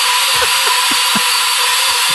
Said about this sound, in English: There's a blender in the background. I can't hear a word you're saying. What? There's a blender! Oh, in your house? Yeah!